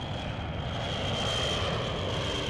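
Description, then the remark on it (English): A steady, loud roar of the jet engines of Israeli rescue planes, El Al name covered, taking off with engines kept running, a thin, high whine riding on top, holding constant throughout with no voices. “The planes took off. They didn't even turn off the engines.”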